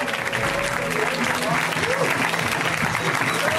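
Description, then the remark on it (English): Steady, dense audience applause fills the whole stretch, a continuous wash of clapping with some voices mixed in underneath. The applause is for Ron Lynch. “Let's hear it for Ron Lynch.”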